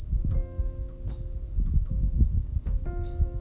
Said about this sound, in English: I think my fire alarm just kind of had a stroke.